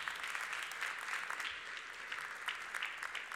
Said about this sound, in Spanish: Y este aplauso es para ustedes que están mirando. Amén. Un aplauso, hermano.